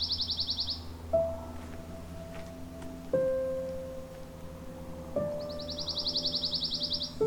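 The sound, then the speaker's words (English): A songbird's soft, rapid musical trill fades out at the start and fades back in near the end, with a few lower sustained tones sounding in between against a quiet outdoor background, in a pine woodlot at the Maister Tract near Cambridge, Ontario, during the bird breeding season. “quite easy to hear with their musical trill, easily confused with the dark-eyed junco, swamp sparrow, or chipping sparrow.”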